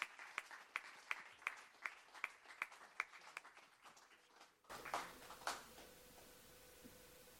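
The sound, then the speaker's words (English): An audience claps in appreciation of a preacher as he comes to minister, in a steady, fairly even rhythm of crisp, sharp hand claps for several seconds, then the clapping cuts off and a few softer, scattered sounds follow. “Why don't we give him a hand clap of appreciation as he comes to minister tonight.”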